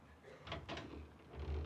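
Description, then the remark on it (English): An unlocked door to a walled-up room creaks and clunks open, with a couple of scraping wooden knocks followed by a low, heavy rumble as it swings. “This is the door to the room that's walled up, isn't it?”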